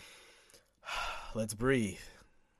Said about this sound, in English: But let's do a little breathing exercise, right?